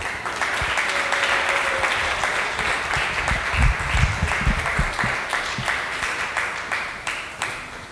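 Steady, sustained applause from a comedy show audience for a comic who has just finished a set, a dense wash of many hands clapping at an even loudness for several seconds, with a few faint scattered voices underneath.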